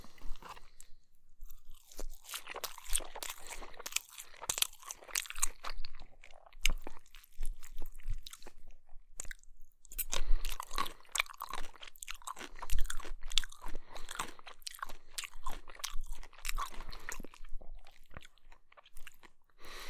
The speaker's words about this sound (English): I think it's Tso's. But I picked it up from a local Chinese restaurant. I got that, and it came with an order of white rice, so be chewing on that. I got some chicken and rice.